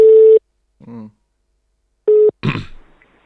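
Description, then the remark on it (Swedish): A telephone ringing tone heard while calling the Mjölby municipality: two short, steady electronic beeps a couple of seconds apart, with a brief low murmur between them and a rough vocal noise right after. “Om man ringer till kommunen och vill fråga”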